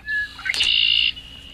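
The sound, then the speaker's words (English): A red-winged blackbird gives its song: a couple of short introductory notes followed by a loud, buzzy trill that holds for about half a second. It is close and clear, with no talking. “Sounds like a red-winged blackbird to me.”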